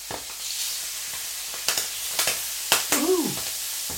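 Steady sizzling hiss of livers frying in butter in a hot pan, broken by several sharp pops and spits, with a brief scraping clatter near the end; no one speaks.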